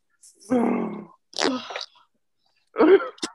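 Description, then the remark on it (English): Three loud sneezes, each a sharp voiced burst, with short pauses between the first two and a longer gap before the last. “God bless you”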